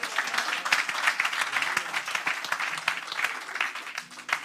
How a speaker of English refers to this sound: Clap for Jesus here.